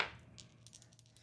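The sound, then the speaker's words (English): Small dice clatter across a hard surface, rolled for two attacks in a game: an initial knock followed by a quick scatter of light, irregular clicks that fade out. Fairly quiet, with no voices. “Dice, please don't fail me.”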